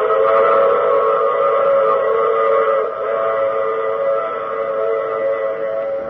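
A loud, sustained train whistle blares steadily with stacked harmonic tones, over the low rumble of a rolling train, lasting the whole stretch with a slight dip midway.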